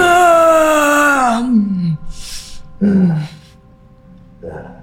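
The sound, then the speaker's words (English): A voice imitates heavy, monstrous breathing: a long, loud, growling exhale sliding downward, a hissy breath, then another guttural groan and a softer huff. It has no words. “This is breathing.”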